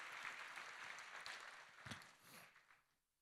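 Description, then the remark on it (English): A church crowd claps together as a clap offering to God, a dense, sustained burst of applause that fades out over a few seconds, the many hands blending into a broad patter. “Come on, let's give God a clap offering if you believe that with me.”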